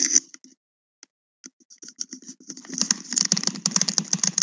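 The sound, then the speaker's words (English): Rapid, repeated clicking from a caller's device on the line, sparse and irregular at first, then turning into a dense, fast clatter of sharp clicks like a keyboard being typed on. The clicks are fairly loud, with no voices. “I don't know how to get your thing to stop clicking.”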